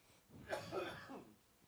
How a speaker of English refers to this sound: You're going to be coughing a lot. I'm going to be coughing off off microphone, on microphone, so bear with me.